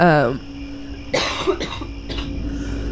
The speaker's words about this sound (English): I'm sorry, we had to edit some of these coughs out. You can edit it in coughs for me, just to make so it's even